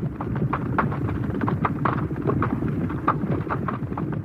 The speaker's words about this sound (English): It's rustling all the time. So as they go through or over, hopefully, the hurdle, you actually fade this up. And if you're clever at it, you vary the level a little bit so it sounds like several horses going through together.